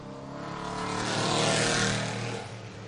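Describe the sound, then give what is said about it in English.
A number 90 RS1 Cup race car roars past trackside at a race track in British Columbia, its engine growl swelling to a peak and then fading as it moves away, with no talking over it. “She is now in an RS1 Cup car. She is a great young talent out here in British Columbia as the 90 does come trackside.”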